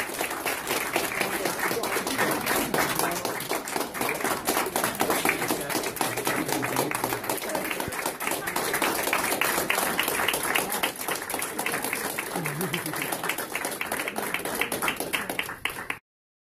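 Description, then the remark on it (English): Sustained applause from an audience, a dense wash of many hands clapping steadily for about sixteen seconds at an even, fairly loud level before cutting off abruptly. “And I would want you to applaud those efforts.”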